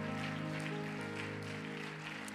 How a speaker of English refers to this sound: Let's continue to give a hand clap of praise to the Lord tonight.